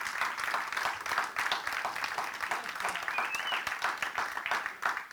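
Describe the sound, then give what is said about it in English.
A church audience breaks into steady, sustained clapping, a dense crackle of many hands at an even loudness throughout, with a faint whoop rising briefly above the applause, celebrating someone who prayed to accept Jesus for the first time. “Clap for him.”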